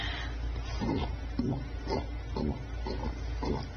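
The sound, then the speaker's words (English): A woman dressed as a pig, wearing a pig mask and rolling in potting soil, imitates a pig, letting out a steady series of short, muffled oinking grunts about twice a second over a low background hum, with no one talking. “Now she's oinking.”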